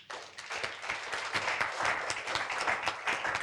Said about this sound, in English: Clap for Jesus.